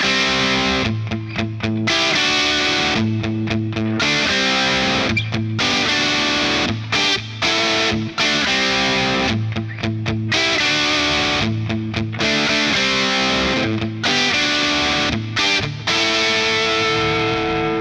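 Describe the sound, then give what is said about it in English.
Electric guitar through a Solo Dallas Storm pedal, with a Universal Audio Delverb delay and reverb pedal on its plate setting, plays loud, chunky chords and riffs with short rhythmic breaks, thick low mids and a bright, saturated top end ringing into space. “Let's listen to the example now, turning the Solo Dallas Storm on.”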